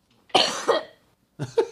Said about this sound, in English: Besides coughing all over the place.